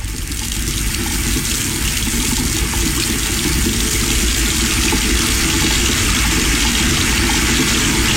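Steady rushing water from a faucet, running continuously at a loud, even level for the whole stretch with no pauses and no voices.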